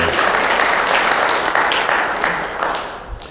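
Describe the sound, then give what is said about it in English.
An audience breaks into another round of steady applause for a woman who has just done a Bible reading, a dense wash of many hands clapping at once that holds strong for a few seconds before starting to taper off. “I think we need to give her another round of applause.”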